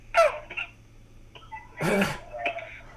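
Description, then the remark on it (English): A man coughs harshly over a phone line during a prank call, two rough bursts with a short, heavier fit near the end and quieter throaty sounds between, with no talking. “He's leanly coughing.”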